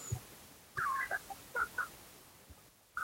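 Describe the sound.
A voice imitates ducks quacking, with a cluster of short, nasal quacks in quick succession, then a pause before one more begins at the end. Moderately loud, with no talking.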